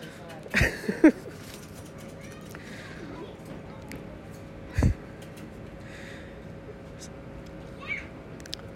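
A cat lets out a short meow or two near the start, followed by a sharp knock and a steady low hum.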